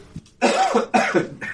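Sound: cough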